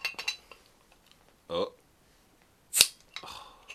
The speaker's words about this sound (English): Oh, I missed it. Oh, we got like double the fizz noise.